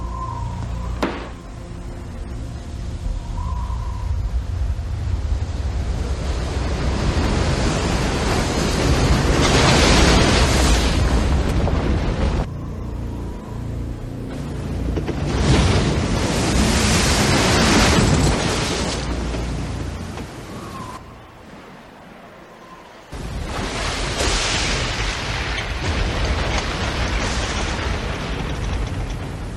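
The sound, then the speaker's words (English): A roaring storm at sea around a boat: howling wind and heavy waves crash in loud, surging bursts, easing briefly before slamming back in, with no one speaking. “Increase the wind. Increase the wind!”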